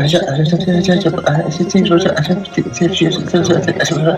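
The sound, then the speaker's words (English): A voice imitates eerie chattering like a child talking, a steady stream of wordless babble with added reverb giving it an echoing quality, fairly loud throughout. “Right, well at first it was like a child talking, chattering.”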